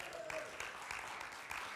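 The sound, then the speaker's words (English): An audience at Camden First Assembly claps steadily in a dense, continuous wash of applause, with a few scattered cheers and whoops mixed in, moderately quiet overall, after hearing that seven people will be baptized that morning. “Listen, when they get baptized, you got to cheer louder than that, all right?”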